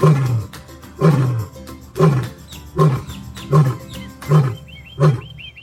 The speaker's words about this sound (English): She's a cougar, which is the same cat as a mountain lion, a Florida panther, a puma, a catamount, a screamer. Throughout North America, they have about 10, 15 different names, amazingly.